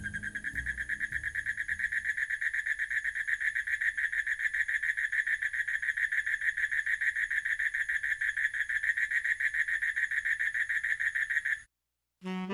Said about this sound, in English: When I was in Bali, I was staying at a hotel kind of built around a little pond there, and it had these wonderful frogs. I used them in ….